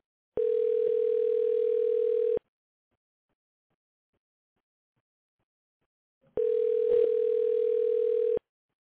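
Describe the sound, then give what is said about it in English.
A telephone ringback tone sounds twice, each steady two-second buzz followed by about four seconds of silence, as a call rings on unanswered. The tone is clear, with no voices. “Yeah, he said he ain't taking calls right now.”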